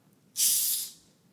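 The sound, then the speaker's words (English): A single sharp hiss of gas escaping as a Pepsi bottle cap is twisted open, bursting in suddenly, holding steady for about half a second, then fading out. No voices accompany it. “I want to hear the difference, if any, because I have different bottles”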